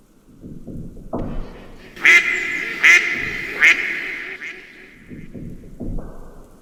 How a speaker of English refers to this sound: Guests that stayed the night at Wickstead would claim to hear a mournful quacking noise coming from somewhere in the house.